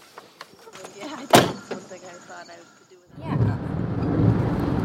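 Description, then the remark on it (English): A car door shuts with a single sharp thunk after a few lighter clicks and rustles as people get in the car to leave, then a steady low rumble fills the rest, with faint muffled voices in the background. “We're going, getting in the car, getting ready to leave.”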